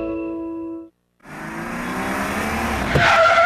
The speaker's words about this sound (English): Whoever just hit those brakes hard for no reason was definitely not you.